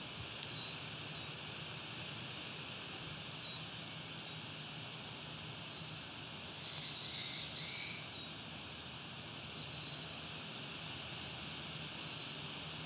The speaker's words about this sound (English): This is one of the songs, the black-throated blue warbler.